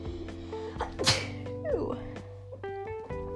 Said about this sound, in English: I'm gonna sneeze.